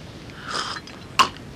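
sipping tea

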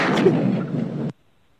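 gunshot sound effects

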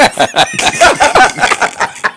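chicken clucking

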